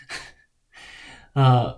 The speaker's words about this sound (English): Okay, I'm like out of breath here. I don't have the stamina for ranting.